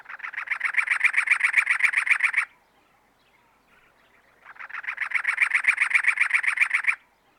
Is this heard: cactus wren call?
yes